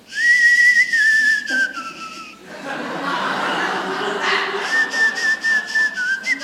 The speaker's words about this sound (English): Someone, I forget the name of it, but they've translated Spanish into whistles. And so there is a whistling Spanish.